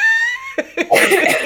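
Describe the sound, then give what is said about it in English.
A steady tone fades out, then two short, sharp coughs are followed by a longer, harsh coughing fit from a lingering illness, loud, with no talking. “I have the never-ending consumption cough from my never-ending whatever it is.”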